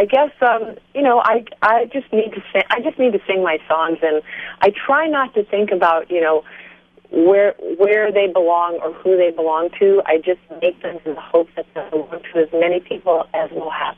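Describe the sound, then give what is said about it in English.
A person talks over a narrowband cell phone line, the voice thin and compressed with a faint steady hum, and the signal briefly drops out now and then. “By the way, are you on a cell phone? I am. Okay, is it okay? You're breaking up a little bit, just a drop.”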